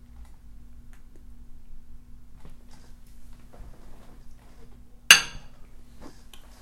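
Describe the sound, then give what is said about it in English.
A single sharp clink of glasses touching in a toast to a 10-year-old MacBook Pro rings out clearly over a low steady hum, preceded by a few faint small taps and rustles. “Cheers. A good decade.”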